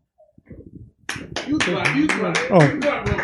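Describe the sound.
Crowd applause swells after a quiet second at a comedy show as a performer is called to the stage: dense, steady clapping from an audience, mixed with cheering and voices, fairly loud and sustained to the end.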